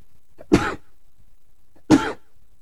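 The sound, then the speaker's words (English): Two sharp, explosive sneezes about a second and a half apart, each a loud burst of breathy noise that cuts off quickly, with quiet between them and no talking. “I think I'm going to sneeze, so we're going to have to definitely edit this out.”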